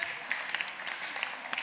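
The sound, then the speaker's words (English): A crowd claps for a dog named Sammy in a steady, dense patter of many overlapping hand claps, with a few sharper claps standing out, moderately loud and with no voices over it. “I mean, he doesn't know you're clapping him, but it's nice to do it anyway, isn't it?”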